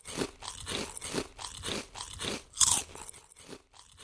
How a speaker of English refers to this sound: Imagine you've just walked in the door after a long day, sat down and opened up a bag of crispy potato chips.